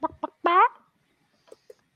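A chicken clucks: two quick clucks, then a loud, drawn-out squawking cluck, followed after a pause by two soft, short clucks. No one speaks.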